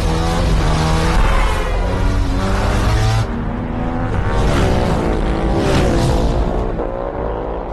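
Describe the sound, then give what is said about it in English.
A loud stationary motorcycle engine revs steadily in place while being recorded, its harmonic pitch climbing and falling through several surges as it cycles through the gears, continuous with no voices. “just a great thing to use when you're recording a motorcycle or a car because you can get the car or motorcycle to be stationary and you can rev the crap out of it and cycle through the gears and everything and get, you know, super clean recordings.”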